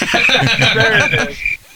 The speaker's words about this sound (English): You got a cricket's chirp? There it is.